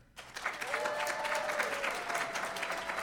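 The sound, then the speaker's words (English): A crowd claps steadily after a brief quiet start, a dense, sustained burst of applause with faint cheering or whooping tones woven through it, as the audience judges a debate by the volume of its applause. “So, by round of applause, you're going to be my my backup judge here on volume here.”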